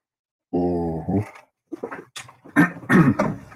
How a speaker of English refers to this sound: I apologize for clearing my throat so much, but that's the way it go.